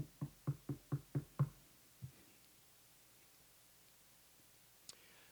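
A quick, evenly spaced run of six firm knocks on a door, then one more knock after a short pause, followed by near silence and a faint click at the end.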